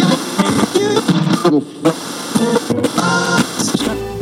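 A short, loud musical sting jingle of about four seconds opening a news section, with bright, dense layered tones and voice-like melodic phrases moving quickly before it cuts off.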